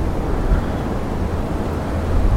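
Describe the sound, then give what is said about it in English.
Wind blows outdoors in a steady, rushing roar with a heavy low rumble that buffets slightly louder near the end, recorded by a camera set up behind a wall. No voices are heard. “Now it's windy, but Hopefully the camera won't move too much.”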